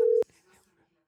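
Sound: phone call ringing tone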